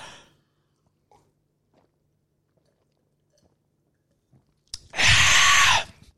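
Near silence with a few faint clicks, then about a second of loud gulping as a fizzy drink from a small can is swallowed down fast in a chugging contest, with a fizzy, hissing edge.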